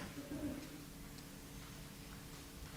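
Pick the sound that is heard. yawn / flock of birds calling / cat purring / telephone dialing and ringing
flock of birds calling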